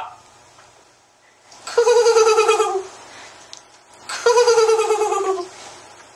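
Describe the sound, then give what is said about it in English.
A person's voice imitates a mockingbird mimicking an eagle's screech as part of a spoken bird poem, two loud, wavering, descending cries about two seconds apart with quiet pauses between. “That last one was a mockingbird imitating an eagle.”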